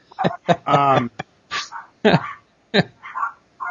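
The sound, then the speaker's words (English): A daughter's small yappy pet dogs yap indoors at home in a rapid, uneven string of sharp, high-pitched barks, with one drawn-out whiny yelp, loud with short gaps between bursts. “I'm hearing my daughter's little yappy dogs I'd like to drop kick because they're driving me nuts.”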